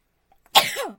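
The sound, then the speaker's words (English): One loud, full-body sneeze: a faint catch of breath, then an explosive burst trailing off into a voiced, falling 'choo', with no talking around it. “I sneeze like my dad.”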